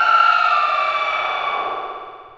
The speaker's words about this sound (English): It seems distant at first, but then the echoes catch up to you, and you hear someone scream.